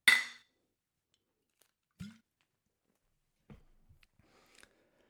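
A single bright clink of two beer bottles, a Blue Moon and a Heineken, tapped together in a toast, followed by a few dull knocks and soft bumps as the bottles are handled and set down.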